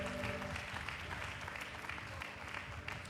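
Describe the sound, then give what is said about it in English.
An audience clapping their hands unto the Lord, a dense, steady wash of many overlapping claps that stays loud and even throughout, with a low murmur of voices underneath. “Let's clap our hands unto the Lord and thank him for the word we are receiving here today.”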